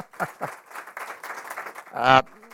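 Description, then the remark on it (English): An audience breaks into applause for the event's volunteer organizers: a couple of sharp early claps, then a dense, steady patter of many hands clapping, capped by a brief loud vocal cheer near the end. “So hat tip to you guys. Clap. Come on.”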